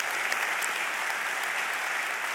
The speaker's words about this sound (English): Yeah, you can clap at that.